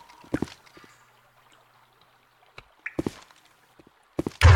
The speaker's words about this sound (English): We only hear our own footsteps.